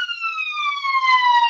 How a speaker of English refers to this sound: I do apologise, you might just hear an ambulance passing me. Something going down in Scotland, it sounds a bit hectic.